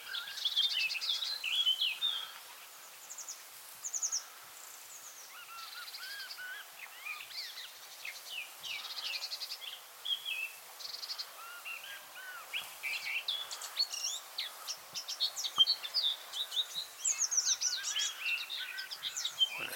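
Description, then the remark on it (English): A songbird sings a varied, warbling, blackbird-like song amid a busy chorus of other chirping birds, continuous and fairly clear, with no one talking. “See, it sounds more and more blackbird-like the closer you get.”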